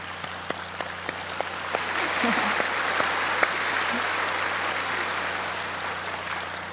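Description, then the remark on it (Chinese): Steady applause from a group of people, a dense wash of many hands clapping at once with a few sharper individual claps standing out, fairly loud and sustained throughout. “我拍手，因为恭喜你们的聪明度啊，这么快开悟啊，这很不简单，了解啊。”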